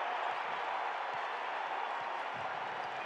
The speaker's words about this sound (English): Crowd's going bananas.